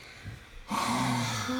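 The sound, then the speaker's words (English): A loud, rasping snore from a pet animal, a quiet breath followed by a long, rumbling inhalation with a nasal, snorting texture. “He's such a loud snorer.”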